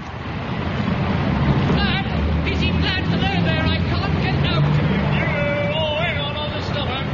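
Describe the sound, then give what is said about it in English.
Rush-hour traffic in the high street of Weston-super-Mare: a steady roar of passing traffic and engine rumble, mixed with indistinct crowd chatter and occasional higher tonal chirps, continuous and fairly loud throughout. “Today we interview PC Herbert Platt, actually on duty during the rush hour in the high street of Weston-super-Mare.”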